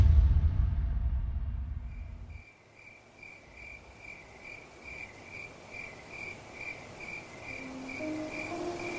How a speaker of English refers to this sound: Choirs of crickets filled the sky like a cascading cacophony.